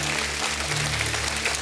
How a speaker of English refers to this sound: If you believe that, give God a great hand clap of praise this morning.